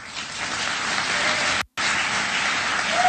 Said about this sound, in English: They were still clapping. Ooh, listen to the woos and the wahs. Whoopee!